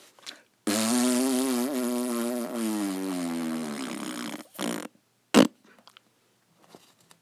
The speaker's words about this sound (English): So no more fart sounds.